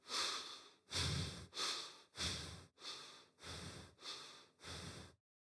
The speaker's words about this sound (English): however, if you go to zone 2, you will breathe something like this.